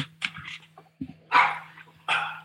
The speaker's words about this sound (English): That's one of the dogs yelling for some strange reason. Before I go any further, let me just sort that out. Hold on.